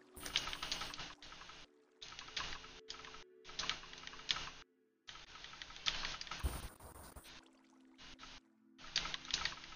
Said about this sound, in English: I'm typing in the rules on the board.